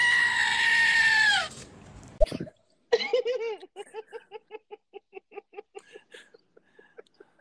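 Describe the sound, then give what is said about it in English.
A goat lets out a loud, drawn-out scream, then after a short pause a rapid run of short, stuttering bleats follows, fading slightly toward the end. “See, unfortunately, if you go ahead and you fuck the goat, then the neighbors get alerted, because all that you can do is stand there fucking your goat and all the neighbors hear is...”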